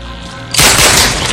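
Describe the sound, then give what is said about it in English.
A sudden loud burst of gunfire in a movie scene where Hobbs executes Reyes erupts after a low rumbling lead-in, sharp cracks blurring into a dense, continuous volley. “He never stops. It just shoots him in the chest.”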